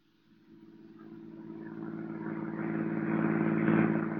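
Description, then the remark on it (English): A car engine hums steadily with strong low harmonics as the car is driven out into the country, growing gradually louder as if accelerating, with no voices present. “I'll tell you the story as we drive to our destination.”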